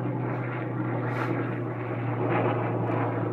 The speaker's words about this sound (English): Please allow the helicopter to fly over.